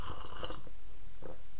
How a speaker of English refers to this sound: Right now, I'm going to reach over here and try my cider. I'm so excited. Oh, it's so hot. Blow on it just a bit. Have a sip.